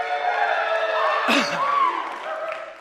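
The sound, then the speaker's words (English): A crowd, including people in the balcony, cheers and claps in a steady, loud wash of noise, with a few high whoops and shouts rising above it before it eases slightly toward the end. “Even in the balcony, people are clapping.”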